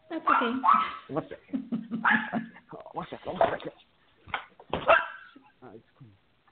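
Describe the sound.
A dog barks several times in loud, irregular bursts, with whiny, voice-like yelps and murmurs filling the gaps between barks.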